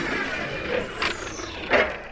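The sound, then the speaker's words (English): A sci-fi bay door hisses shut: a steady mechanical whoosh with two sharp bursts of pneumatic air, the second louder, over a faint falling whine. “Closing the bay door!”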